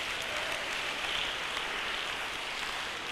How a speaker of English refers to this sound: Somebody clap unto the Lord.